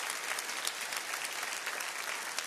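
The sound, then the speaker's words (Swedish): A crowd claps steadily in dense, continuous applause, the sound filling the space evenly at moderate loudness with no voices standing out. The applause is given to Jesus for 250 trucks of aid sent into Ukraine. “Det kan du ge Jesus en riktig applåd för det är ganska mycket.”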